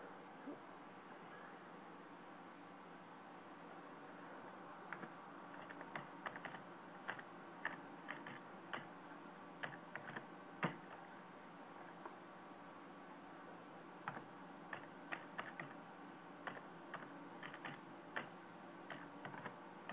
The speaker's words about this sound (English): Yeah, I'm just typing here. Just don't mind me for a sec.